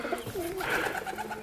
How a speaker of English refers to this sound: I tell you what is nice about it, seeing birds. All right, they're only pigeons. But seeing them fly, they're free.